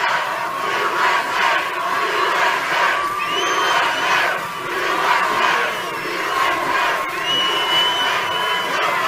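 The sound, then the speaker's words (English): A large crowd at a President Trump campaign rally roars and cheers continuously, a dense wall of voices with swelling waves of shouting and occasional high whistles cutting through. “This is quite a crowd.”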